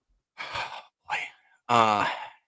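Three heavy breaths right up against the microphone, short bursts of airy noise, with the last one stretching into a long, voiced sigh. No talking.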